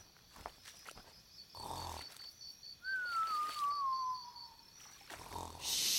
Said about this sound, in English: I think I hear something snoring. You're right, Digger. Look up in the tree. It's a giant sloth taking a nap.